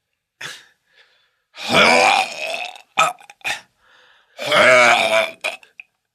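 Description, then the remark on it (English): A voice imitates vomiting, with two long, loud, gurgling retches separated by short clicks, gulps and a brief gasp. “All right, I'm going to puke it up, stuff it back in you.”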